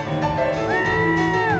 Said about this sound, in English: That's you right there, the crowd. That's definitely me. I'm a woo-hooer.